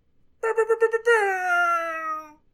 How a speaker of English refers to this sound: Let's hear an air horn.